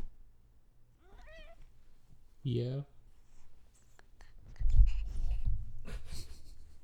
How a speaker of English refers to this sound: I'm going to leave all of this in so that you guys can revel in the sound of a cat discovering podcasting equipment and wrapping himself in all of the wires.